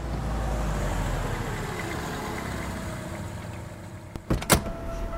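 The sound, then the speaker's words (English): A car engine hums low and steady in a car park, easing off slightly, then a few sharp clunks and knocks, like a door or latch, break in near the end. “The sound of their footsteps echoes in the area, mixed with the distant hum of car engines.”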